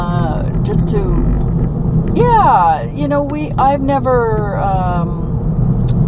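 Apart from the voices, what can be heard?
car traffic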